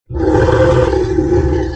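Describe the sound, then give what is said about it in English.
A deep, rumbling animal growl swells in and holds steadily loud for nearly two seconds, a low throaty roar with no voices over it. “A growl that was echoed an instant later from both sides.”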